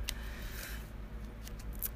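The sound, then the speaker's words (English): A tarot card deck being shuffled for a reading, a handful of soft, crisp flicks and rustles spread irregularly over two seconds against a low steady hum, with no talking. “So, yeah, I should have been shuffling while I went through that entire intro, but I did not.”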